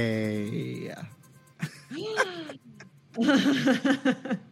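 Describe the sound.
A drawn-out voiced exclamation, then a sharp breathy intake and a falling "ohh", a woman's surprised gasp at news of allegedly counterfeit pasta, fairly loud, followed by quick overlapping speech.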